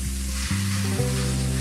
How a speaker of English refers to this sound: I'm gonna check the meat. It's sizzling away over here.